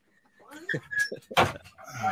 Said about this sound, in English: Go. Bye. Close the door.